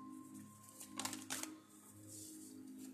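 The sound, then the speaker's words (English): A deck of playing cards being shuffled: two quick, crisp riffling bursts against a low steady hum with no talking; two cards pop out of the deck. “All right, we're all shuffled, and two cards popped out.”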